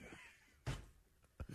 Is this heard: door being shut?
yes